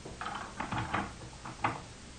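A series of short clicks and rattles, like a key working a lock, followed by the soft scrape of a door opening. The handling sounds are moderately loud and there is no talking.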